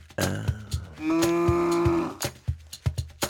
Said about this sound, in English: No, silly. A cow says moo.